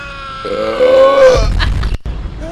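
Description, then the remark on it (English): A recorded scream sound effect: a strained, loud vocal cry holding a steady pitch for about a second, breaking into a rough, gravelly low roar before a brief cutoff and short tail. “Why don't we get a little Mail Scream going?”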